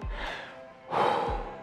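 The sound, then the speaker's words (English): Heavy, labored breathing of a person worn out after hard rowing exercise: a long exhale followed by a louder, harsher breath, panting with no talking. “Okay, sorry to all the podcast people who just had to listen to me pretty much just heavy breathing at you for 30 seconds.”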